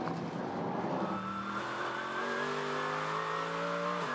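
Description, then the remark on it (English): The engine of a bright yellow number 3 Corvette race car revs hard and climbs steadily in pitch as it accelerates out of the final corner through traffic, loud, with a faint tire squeal early on and no voices. “Corvette with fantastic run out of the final corner. It's the number 3 car, the bright yellow machine, and is just carving his way through traffic there.”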